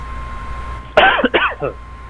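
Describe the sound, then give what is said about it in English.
A single throaty cough or throat-clearing burst from a person coughing again, rough and raspy, breaking into a couple of short choppy pulses before fading, with quiet room noise around it and no talking. “Yeah, I just coughed again.”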